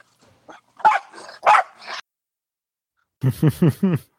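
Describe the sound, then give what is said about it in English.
A dog barks on the command "speak": a couple of sharp, throaty barks, a brief pause, then a quick run of four rapid barks in a row, fairly loud with no talking. “Cooper has something to say, too.”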